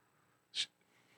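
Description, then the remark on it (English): A single small, breathy cough from a woman, short and sharp, against a quiet background with no talking. “She was having a little cough there.”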